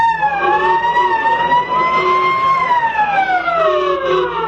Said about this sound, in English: Fire engines came running and there was much excitement.